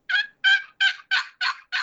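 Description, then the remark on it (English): A turkey call imitating a hen turkey, six raspy yelps in a steady, evenly spaced run, loud with no talking. “I mean, that's just got that turkey in it.”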